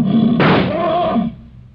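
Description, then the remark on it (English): A lion gives a loud, rasping roar lasting about a second. It bursts in abruptly, with the sharp blast of a point-blank rifle shot fired at the lion, then fades over a low rumble. No one speaks. “If he stirs, the lion will kill him.”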